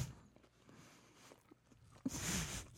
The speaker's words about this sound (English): Oh, chewing.